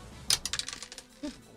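Dice clatter across a tabletop, a quick burst of sharp clicks that bounce and settle over about half a second, followed by a brief low murmur.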